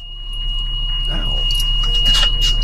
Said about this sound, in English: that is a natural sound from her nose, just her nostril being pinched in a way with air being expelled